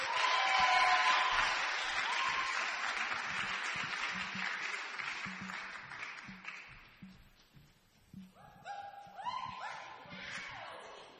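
An audience claps in a dense, steady burst of applause that gradually thins out, with scattered voices and a few cheers rising as the clapping fades toward the end.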